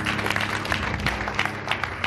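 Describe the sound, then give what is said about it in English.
A church audience claps hands for God during a sermon, a dense, steady patter of many palms with brief louder bursts, a low hum beneath, and no voices standing out. “Clap your hands for God.”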